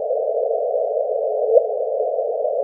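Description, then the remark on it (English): Sonified gravitational waves from two black holes merging into one much more massive black hole, with the signal ramping up to about 100 times a second just before the merger: a steady, mid-pitched hissing drone that runs unchanged, broken once by a faint, quick upward chirp before cutting off abruptly. No voices. “And we can actually translate that into audio, and we can listen to the audio clip of what would happen if you were listening to gravitational waves.”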